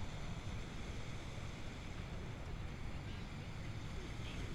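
Ocean waves breaking at the beach make a steady, rumbling roar of surf, with gusty wind buffeting the microphone throughout and no distinct pauses between swells.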